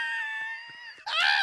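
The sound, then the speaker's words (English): A person lets out a shrill, sustained horror-style scream, auditioning for the part of the screamer in the movie Scream, breaks off for a split second, then launches into a second, even louder and more strained shriek, alone with no talking. “Wait, did you just say that in the movie Scream, someone was auditioning as the screamer?”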